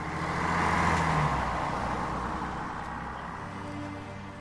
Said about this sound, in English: As the sound of the bus rolled away and disappeared in the distance, unbeknownst to everyone, there was an additional passenger on that bus that day.